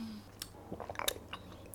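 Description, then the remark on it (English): Someone sips water from a bottle, a few quiet wet mouth clicks and swallows spread over under two seconds, with no talking. “So you guys know we have to take our sip together or whatever.”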